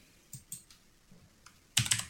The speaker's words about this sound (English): But just pull that up. Just type it in. Just click, click, clacking away.